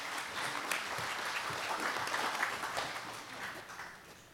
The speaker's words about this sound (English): So I'd like to invite some of those leaders up here with me. Yeah, you can applaud.